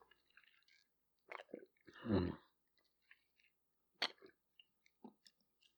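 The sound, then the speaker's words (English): Handling noises: a few sharp clicks and crinkles as a small container of High C Ecto Cooler juice is opened, a louder rustling burst, then quiet sipping and small mouth sounds, with no talking. “I'm going to open up my little container here of Ecto Cooler.”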